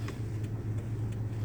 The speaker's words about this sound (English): And I know my podcast has been hella janky because I'm always in the car and it's always hella noise. Y'all be hearing me driving around, maybe even eating chips.